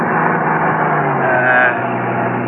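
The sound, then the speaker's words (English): A loud, steady rumble of a large truck being passed on a highway near Victorville, on the cutoff toward Edwards Air Force Base, with droning engine tones and road roar that swell slightly midway as it goes by. “All along the way, Jackie had carefully scrutinized every truck we passed, going in either direction.”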